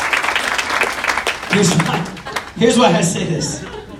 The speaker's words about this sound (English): You can give him a round of applause. Thank you, guys.